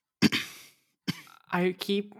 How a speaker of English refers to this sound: I don't want to interrupt you again, but I just tried muting myself, and then I loudly coughed again, and I can see the spike again. Weird, I couldn't hear it, so... I hope it won't be in the recording.